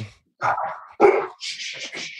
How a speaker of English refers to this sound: I thought that was your dog at first, Black. And then I was like, nah, your dog. It was my dog. You hear me? Oh, it was your dog.